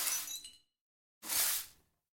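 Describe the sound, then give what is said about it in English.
Two brisk sweeping strokes with a pause between, the first scattering tinkling fragments of broken glass, the second a broader gritty brush sound, fairly loud with no voices; a sound effect made from crash sounds with their attack removed, combined with a sweeping noise. “Took the loud bit off the top, and combined that with a sweeping noise, and that gives you the impression of someone sweeping up little bits of glass.”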